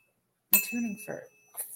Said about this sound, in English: My tuning fork.